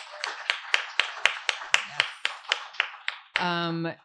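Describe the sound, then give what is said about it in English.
Steady, evenly spaced hand claps, about a dozen in quick succession, as an audience applauds an author after her reading, then a brief sustained voice cuts in at the end. “More applause, please,”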